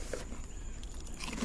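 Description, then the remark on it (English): Crunchy snack chewing, a steady stream of crisp crackling bites and mouth noises filling a short stretch with no talking. “Sorry about all the chewing noises.”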